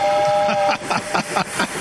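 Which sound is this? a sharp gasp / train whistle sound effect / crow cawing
train whistle sound effect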